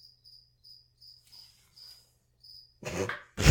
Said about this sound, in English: I'm sorry. Cricket was perfect timing.